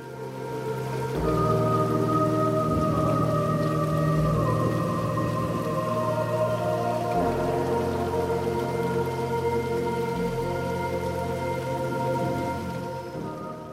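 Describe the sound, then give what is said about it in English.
Water runs steadily downstream in a continuous, even rush that holds at a moderate level throughout, with low sustained tones humming underneath. No one speaks. “Now focus on the sound of the water as it continues to run downstream.”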